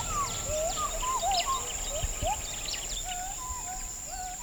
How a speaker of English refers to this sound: Where we've stopped, the forest is burnt away, most likely to make way for oil palm trees. In a distant stand of forest, we hear gibbons.